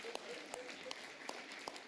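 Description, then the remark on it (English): A church audience applauds to honor its oldest veteran, aged 92, a dense wash of many hands clapping with a few sharper individual claps standing out, and faint voices mixed in beneath. “That deserves a round of applause, just that right there, amen.”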